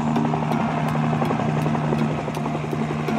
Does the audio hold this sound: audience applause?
no